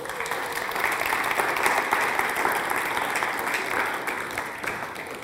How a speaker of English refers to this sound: Thank you. Let's clap for Novato.